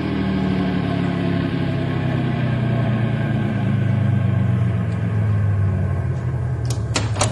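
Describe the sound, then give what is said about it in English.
A car engine rumbles steadily, its low drone sinking in pitch as the car is stopped gently and slows to a halt, followed by a few sharp clicks and knocks near the end. “stop the car gently and everybody out.”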